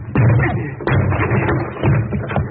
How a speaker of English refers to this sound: I'll have to break this door down, Margo. Look out.